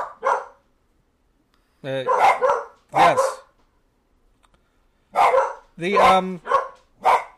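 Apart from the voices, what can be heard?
dog barking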